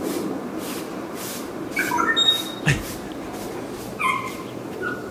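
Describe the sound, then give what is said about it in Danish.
A bird calls in two short bursts of high, whistled chirps with a few sliding notes, then a single brief note, over a steady hissing background with no voices. “Og jeg ved ikke, hvad det er for en fugl, for jeg kunne ikke se den.”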